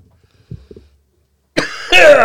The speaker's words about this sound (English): can't handle the strawberry cough tonight.